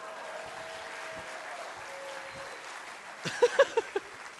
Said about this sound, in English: there's over 75 different combinations that add up to 97 in 28.6 seconds. Now you may applaud.